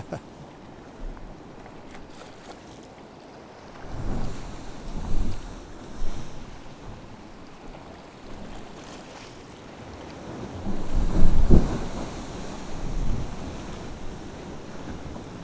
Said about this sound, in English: And then a wall of white water roars out. Be a good one.